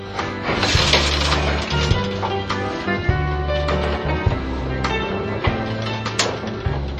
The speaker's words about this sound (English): And as you can also see, the doors are also manual. So this elevator predates the use of automatic doors on elevators. There's a manual car gate and a manual sliding hoistway door.